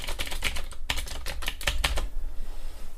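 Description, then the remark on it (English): Rapid typing on a fancy computer keyboard bought in California, a clattering run of key clicks with a few sharper strikes standing out, continuing steadily for a few seconds with no voices. “Yeah, I've got to type on that. That's what makes all the noise.”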